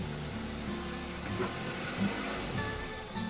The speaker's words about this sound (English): pulled into a small, rundown motel and parked the rental car.